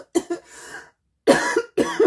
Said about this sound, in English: I'm going to pause here. Okay, a bit of a coughing fit there.